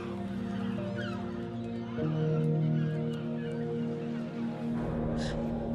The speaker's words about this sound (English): We ran to her on the beach. There were seagulls.